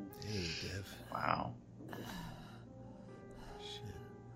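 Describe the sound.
Heavy, ragged breathing of the character Devi in an audio drama scene, with a few gasping, voiced breaths, the loudest burst in the middle, over a steady low background hum.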